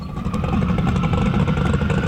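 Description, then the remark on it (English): A car engine idles steadily with a deep, rumbling low-end throb, a whistle and a faint mechanical clatter, loud, continuing unbroken for the whole stretch with no talking. “I just, here's the sweet, sweet sounds of that bad boy.”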